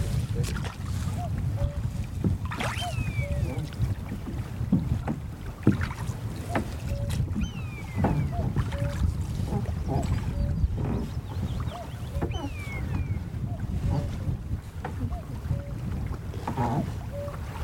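A rowing boat moves across the open water of a loch in Assynt, Scotland, with oars dipping and splashing in a steady rhythm over wind and lapping water, while birds, including a cuckoo, call now and then.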